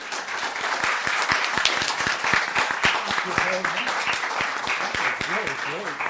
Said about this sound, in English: He was a young boy growing up in Philadelphia, and that's what he's going to tell us about tonight. So let's give him a warm round of applause.